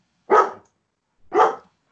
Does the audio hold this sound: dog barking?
yes